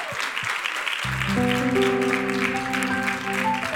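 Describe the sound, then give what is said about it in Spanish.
An audience claps steadily, a dense wash of applause lasting the whole clip, while sustained keyboard chords swell in after the first second and hold underneath. The applause is for the group of women gathered there. “Hay silencio aquí, están tranquilitas hoy, están calladitas, tenemos un buen grupo aquí, un aplauso para todas ustedes.”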